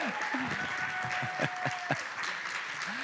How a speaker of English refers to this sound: That got a clap. That got a clap.